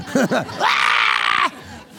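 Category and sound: vocal imitation, voice imitating a scream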